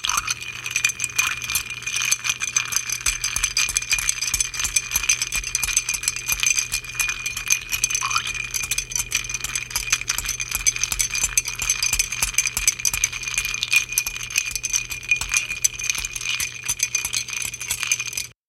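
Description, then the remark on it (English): Ice cubes stirred in a cocktail glass while mixing a Diamondback cocktail, a steady stream of bright, rapid clinks and rattles that keeps an even pace for the whole stretch, with no talking over it. “So that goes into the glass, and we're going to add some ice and give this one a good stir.”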